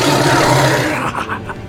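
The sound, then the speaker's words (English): A person growls out a loud, raspy tiger-like roar, a sustained rough blast that breaks into a few shorter guttural bursts as it trails off. “And he lets out a roar. This tiger roar.”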